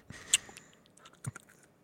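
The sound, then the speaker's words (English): Someone crunches on an almond: a few sharp, dry cracks with a louder snap early on and another burst of crunching later, amid quieter chewing clicks. The whole thing is fairly soft, with no talking. “What you crunching on there”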